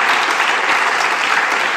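An audience claps steadily, a dense, even wash of many hands applauding at a loud, sustained level with no voices standing out.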